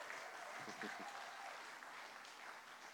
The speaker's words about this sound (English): That's a half-hearted applaud, I reckon. We could do better than that.